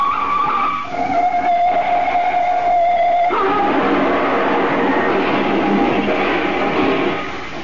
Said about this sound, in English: Did you see that crash? That drunken driver! That car's a total wreck.